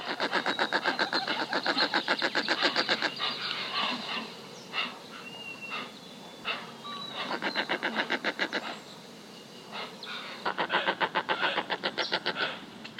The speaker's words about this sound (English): By the way, this is what David Yarnold's favorite bird sounds like. It's the roseate spoonbill, a very interesting, very pink, very unusual sounding bird.